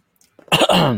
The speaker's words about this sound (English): can I get a cough from you?